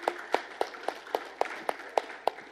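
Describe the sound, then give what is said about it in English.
Steady, evenly spaced hand claps for volunteers who stood up and read Bible verses (Matthew 28:18-20), about nine sharp crisp smacks in under three seconds over a soft background hiss, fairly quiet, with no one speaking. “Can we give a hand clap for our friends who stood up and read the word of God?”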